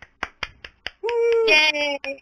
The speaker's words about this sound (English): Yeah, our studio audience is the one man clapping in the corner. It's got to be me though. Yeah. That's that guy in the background. I don't know who that is. Yeah, it's that guy. It's one that's just lonely in the corner yelling for the band.